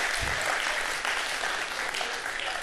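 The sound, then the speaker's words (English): Steady, dense applause from a crowd of many people giving God a clap offering, a loud continuous wash of clapping with no gaps across the whole stretch. “Come on, give God a clap offering in your living room.”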